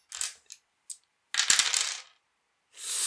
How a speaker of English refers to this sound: So many dice!